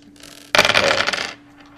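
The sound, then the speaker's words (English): A burst of dice dropped all at once onto a table, a dense rattle of clicks lasting under a second before settling into quiet. Fairly loud, with no talking. “Would you like me to drop all my dice at the same time or one by one?”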